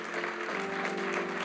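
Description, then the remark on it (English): An audience applauds the newly introduced directors with dense, steady clapping that holds an even loudness throughout, with a faint sustained tone humming underneath. “So give them a big hand clap.”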